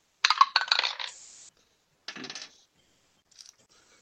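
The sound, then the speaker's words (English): Dice rolled by players during a tabletop role-playing game clatter across a hard tabletop in a quick burst of bright clicking, roll to a stop, then a second shorter rattle follows, with a faint final tick. No one speaks. “Roll your shit.”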